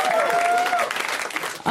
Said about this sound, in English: That should be an applause break. That's stupid that was an applause break.